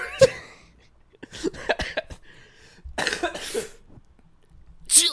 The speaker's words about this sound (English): Oh! I'm sorry, ladies and gentlemen. I'm still coughing.